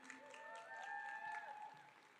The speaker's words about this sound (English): All right, y'all can have a seat, ladies. Welcome. Give a round of applause for all the ladies.